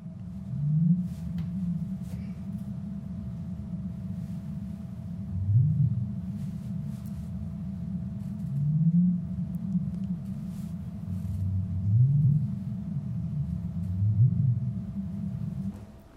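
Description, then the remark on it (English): Five short, low rising upsweep calls of a North Pacific right whale, spaced a few seconds apart, each a brief whoop climbing in pitch over a steady underwater rumble. “But what we record, I'm going to play this, but it's a series of these little upsweeps.”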